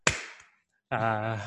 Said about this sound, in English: Actually, no, we won't start again from scratch, but I'm going to clap this so I know where it was. That was a really bad clap.